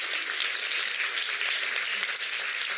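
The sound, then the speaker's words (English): A conference audience applauds steadily, the dense wash of many hands clapping at once at a constant, fairly loud level with no voices heard. “So you need to give yourselves a big applause for at least recognizing the fact that we are all one people.”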